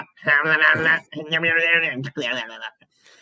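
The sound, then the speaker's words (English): A voice imitates the bleat of a fur-covered goat dinosaur creature that is ridden, like a T-Rex crossed with a mountain goat: three drawn-out, wavering, nasal cries in quick succession, loud, with short gaps between them and no other talk. “Goat dinosaur, they ride them. They're like T-Rexes, but mountain goats, but also just the sound that they make.”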